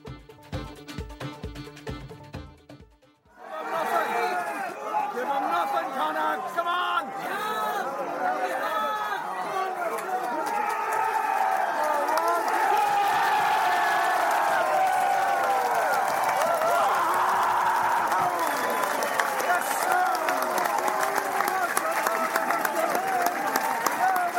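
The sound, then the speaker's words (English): A rugby stadium crowd, buoyed up and bouncing with about ten minutes of the match left, cheers in a loud, sustained roar of many overlapping voices lasting about twenty seconds, after a short, different sound at the very start. “But the crowd are buoyed up. They're bouncing.”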